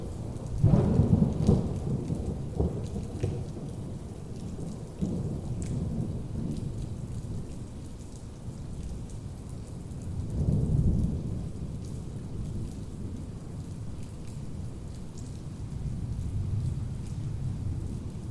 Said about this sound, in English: 3-minute, 43-second recording of a thunderstorm from June 14, 2022. It will be played three times in this presentation. Listen closely. Can you feel the thunder?